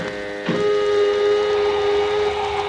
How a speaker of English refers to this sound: Let us know when your helmet is fixed, and we'll exhaust the airlock, Lemmy. Helmet fastened. Over to intercom. Airlock. Exhaust.